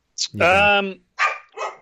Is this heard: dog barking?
yes